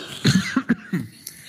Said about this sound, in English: I'm going to add to the coughing. Listen, it's coughing season, and it's all right.